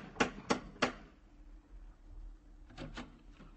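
Three loud, evenly spaced raps of a brass lion door knocker on a brownstone on 93rd Street ring out, then after a short pause come a few softer clanks and clatters. No one speaks.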